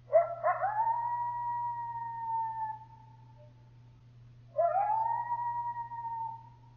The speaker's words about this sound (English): At night, coyotes howl and emit a series of short, high-pitched yips. Howls are used to keep in touch with other coyotes in the area and to warn neighboring coyotes and prevent conflict.